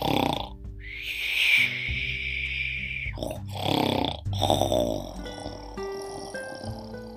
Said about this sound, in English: Baba Yaga closed her eyes and began to snore.